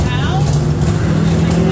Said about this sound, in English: Turn your engine off. There's literally a sign that says turn your engine off and he's filming it. Like, why would you leave your engine on?